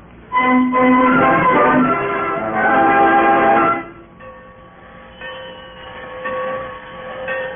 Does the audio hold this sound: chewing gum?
no